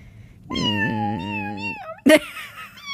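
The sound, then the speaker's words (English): A cat lets out a long, drawn-out meow lasting over a second, followed by a brief, louder yowl. The sound is clear, with no one talking. “Oh, you should have a room for me, and there's just lots of kitty cats.”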